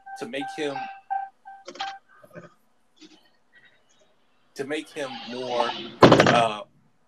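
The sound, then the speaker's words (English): A door opens and shuts several times in quick succession, with squeaky creaks and soft knocks, ending in a louder creak and a heavy slam. “That's the fifth time he did open and close this door.”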